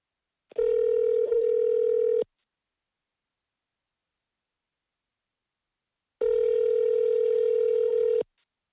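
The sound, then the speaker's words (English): A telephone line tone sounds twice as a phone call is placed, steady, unbroken electronic hums, each lasting about two seconds, separated by a long stretch of silence. It is clear, with no voices. “So let's just get to it and get Ron on the phone.”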